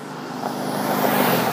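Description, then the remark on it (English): A car speeds past on the street in front of a house, a broad whooshing engine and tire roar that swells and stays loud through the brief moment, with no voices. “And, dude, there's fucking flying by like a fucking race car.”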